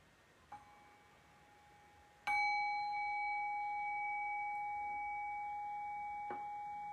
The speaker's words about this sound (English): Okay, so I'll just ring the bell and we'll do this brief exercise.